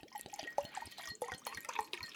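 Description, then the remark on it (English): Beer pours from a bottle into a glass, a steady splashing, gurgling stream with small drips and bubbly fizz running for about two seconds, no voices. “Then you can pour me more.”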